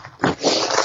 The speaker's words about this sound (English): Sorry, I'm just blowing my nose, sorry, honestly.